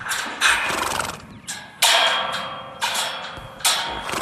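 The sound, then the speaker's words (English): Feral horses worked by a grazier in Central Queensland, Australia, neigh and whinny loudly several times in close succession, shrill, with hooves clattering underneath. No one speaks. “And the couple who found their passion working with horses that are classed as ferals.”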